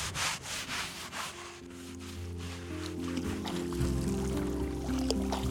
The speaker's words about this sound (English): A little soap. Get a little water here, grab a scrub brush, one of the not so glamorous parts in the boating industry.